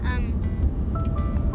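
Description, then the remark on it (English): Steady low road and engine rumble fills the cabin of a moving car on a trip, loud and continuous, with a brief bit of voice over it. “I don't have my launches list this week because I'm in a car”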